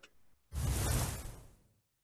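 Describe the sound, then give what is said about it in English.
A thunderstorm sound effect: one loud thunderclap bursts in with a deep rumble and fades away over about a second, with no voices. “But the best way we bring those on is by the sound of our thunderstorm.”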